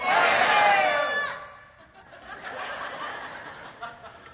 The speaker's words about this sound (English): When I say three, I want all of you to just scream out your first name. Are you with me? This is not hard. Like one, two, three, and you're going to scream out your first name. One, two, three.